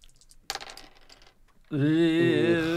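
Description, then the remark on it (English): Dice rolled for a 'look' stat roll clatter and rattle across a hard surface for about a second in a quick burst of clicks, then a loud, sustained tonal sound with a wavering pitch takes over. “I rolled a 3 plus a 1.”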